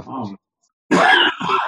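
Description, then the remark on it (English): A short voiced grunt, a brief pause, then two harsh, raspy coughs from a person with COVID-19 in quick succession, loud. “that's my COVID-19 cough, by the way.”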